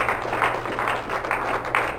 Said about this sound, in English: Let's give hands to the Lord Jesus Christ. Just clap. Amen.